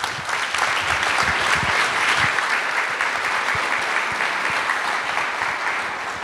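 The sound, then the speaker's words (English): A large audience at a Zocalo event claps steadily and warmly to welcome a speaker, a dense, sustained wash of applause that holds at an even, fairly loud level for several seconds without any talking. “Please give a very warm welcome”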